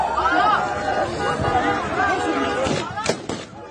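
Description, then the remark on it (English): A chaotic crowd at Kabul airport, Afghanistan, with thousands of people making a run for the airport as the Taliban try to deal with the crowds: many overlapping voices shouting and clamoring at once, loud and continuous, with a few sharp cracks bursting through near the end. “and kind of anarchy at the moment as the Taliban want to look like they're in control, but at the same time trying to deal with crowds and just feeling, I think, pretty overwhelmed with the thousands of people who are making a run for the airport.”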